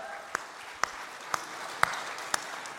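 An audience claps together in a steady rhythm: five sharp, even beats about half a second apart over a low, continuous crowd murmur.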